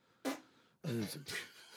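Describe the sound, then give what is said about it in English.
A loud mouth fart: a voice imitating flatulence with a short burst, then a longer wet, buzzing raspberry that trails into a sputter. “I think it was a mouth fart.”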